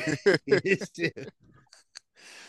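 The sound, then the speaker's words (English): A person talks briefly, then after a few small clicks comes a short, soft slurping sip of kombucha, faint. “What the hell are you sipping?”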